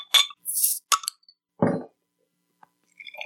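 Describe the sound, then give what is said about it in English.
A bottle of Tripel Karmeliet beer being opened: a metallic scrape and a sharp hiss of released gas, a clink, then a dull thud, followed by a faint tick and light glassy clinks. No one speaks. “Without any further ado, I'm going to crack one now.”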